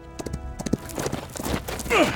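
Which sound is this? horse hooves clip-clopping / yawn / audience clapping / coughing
horse hooves clip-clopping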